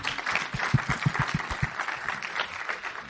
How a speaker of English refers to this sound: Okay. Yes, clap it up.